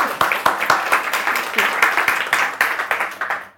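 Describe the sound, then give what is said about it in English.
A round of applause from many people for author Sarah Moss at a book reading: dense, crackling clapping with no clear rhythm, holding steady at a fairly loud level for a few seconds before dying away. “So let's have another round of applause for Sarah Moss.”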